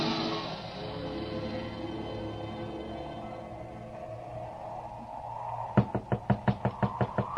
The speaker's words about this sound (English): I tell you, this boarding house can't be my mother's house. Knock again. Oh, this broken-down old shack, my mother's house? Knock again, George Bailey.